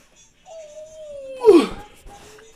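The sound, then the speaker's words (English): A dog lets out a long, thin, steady whine that slides slightly lower, then breaks into a short, louder whimpering yelp before trailing off into quiet. “Hi, puppy. Oh. Secondary special guest. Come here, Papa.”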